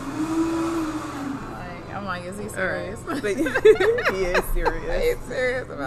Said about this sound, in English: So he's running the blender, and he's got his AirPods in. Oh, it's the blender. I thought it was the drill. It's the blender. It's the blender. Wow. And he's got the AirPods in. Like, he probably can't hear none of that madness.